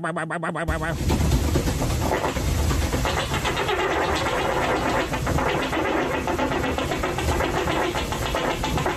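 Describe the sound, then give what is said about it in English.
A long, loud, rumbling fart begins after a brief sputter and drones on steadily for about eight seconds, shuddering and vibrating like an unbalanced washing machine. “He sounds like a goddamn unbalanced washing machine there.”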